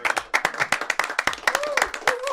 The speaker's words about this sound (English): Let's give a round of applause for us.